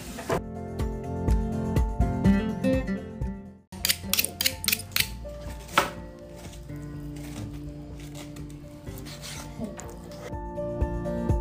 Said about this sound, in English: He's cutting, he's chopping the pork. Oh God, it's crazy.